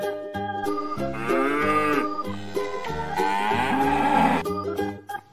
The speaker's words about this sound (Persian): شاخ نزنی به هیچ کس درد میکنه خیلی جاش، درسته که شوخ داری، یه گاو مهربون باش. بازم بگو ما و ما علف برات میارم، فقط یکم شیر میخوام، کاری باهات ندارم.